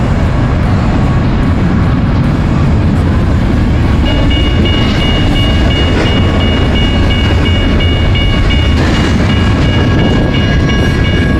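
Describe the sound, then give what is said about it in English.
A freight train rolls past along Route 66 in Flagstaff, Arizona, a steady loud rumble with clattering railcars and a faint metallic squeal rising partway through, with no voices. “They're on the other side of this train here.”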